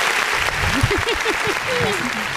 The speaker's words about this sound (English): Can we get an applause, please? Y'all can get an applause for the motherfucking cast up in here.